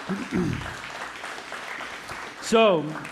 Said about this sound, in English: And so what I want to say for our children ministry volunteers is that I think that our workers, our volunteers in that way show a genuine faith to our children. And I want to give them a round of applause for doing so.